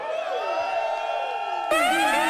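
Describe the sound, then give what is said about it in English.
A crowd at a band's show cheers and whoops in a sustained, dense roar, with high voices shouting over the noise, and the din swells louder near the end. “If you've seen … before, make some noise.”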